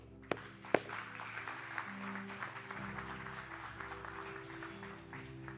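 An audience applauding to welcome those who raised a hand or prayed to follow Jesus Christ into the kingdom of heaven, with steady, dense clapping that holds for several seconds after a couple of sharp, loud claps at the start. A low hum sits underneath and no one speaks.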